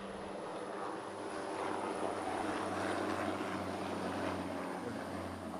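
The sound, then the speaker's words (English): A big helicopter flies overhead: a steady, droning engine hum with a low rotor-like throb, loud and continuous, with no talking. “That's a big one. I've always wanted to be on a helicopter.”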